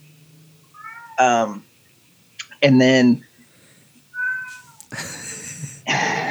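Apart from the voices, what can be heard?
cat meowing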